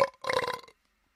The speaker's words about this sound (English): please, no belching.